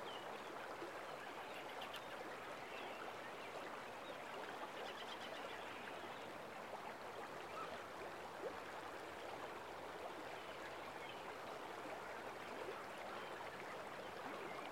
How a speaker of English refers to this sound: And the river has been the god of our earth church today.